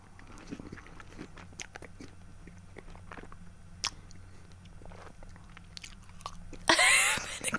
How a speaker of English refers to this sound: Hope people don't mind listening to a bit of chewing. Somebody I know says, don't eat on the radio. Well, the lemon curd is sensational.